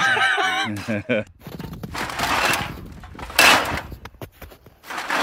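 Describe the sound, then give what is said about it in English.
A front door being opened for arriving guests, with a rattle and handling noise followed by a brief sharp knock, while voices chatter and laugh at the start. “You keep getting the fucking door”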